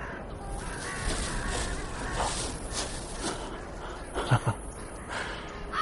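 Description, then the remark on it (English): Harsh carrion crow caws ring out repeatedly over a dense, rough background, with a couple of louder, sharper calls standing out near the end. “Carrion crow.”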